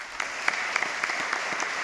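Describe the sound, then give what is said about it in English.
Audience applause from a crowd that includes senators from the coal states of West Virginia and Wyoming and the CEO of Murray Energy Corporation. It is a steady wash of many hands clapping at once, with scattered sharper individual claps popping out above the dense, even patter. No voices are heard. “Among those applauding warmly were senators from the coal states of West Virginia and Wyoming and the CEO of the Murray Energy Corporation, the largest U.S.”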